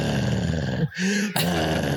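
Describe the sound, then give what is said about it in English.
A rough, rumbling growl voiced by a person mimicking a machine, loud and close, broken by a brief lower hum in the middle before the gritty snarl resumes. “Like, why did all the machines like breathe and growl?”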